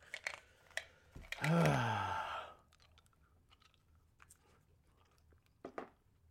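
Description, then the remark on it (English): Moist chewing of cinnamon gum with scattered clicks and smacks, broken by a louder, crackly burst lasting about a second, then quieter sporadic mouth sounds. No one speaks. “Well, I might as well get my icebreakers, ice cubes, cinnamon gum, because I got my gum already.”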